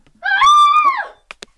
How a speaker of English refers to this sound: What was that? Sounded like the mother. And that was more than an argument scream.